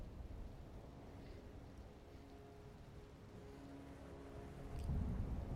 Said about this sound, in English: And as lightning cracks again, behind that castle, your eyes instinctively are drawn to it.